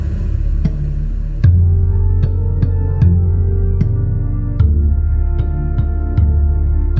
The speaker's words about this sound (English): I mixed this cue specifically to get that engulfing feeling, which meant I had to rely a lot on heavy reverb.